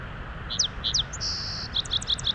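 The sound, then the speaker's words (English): A song sparrow (Melospiza melodia) sings: a few crisp introductory notes, a steady buzzy trill, then a quick jumble of high chirps, all over faint background hiss. “For some reason, whenever I see a song sparrow, I always say its Latin name out loud.”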